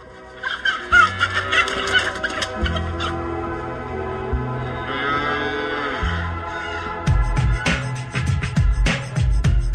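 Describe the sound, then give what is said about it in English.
Chickens cluck back and forth in a steady, overlapping chatter, fairly loud, with a denser, busier layer of sound building near the end. “They cluck at each other.”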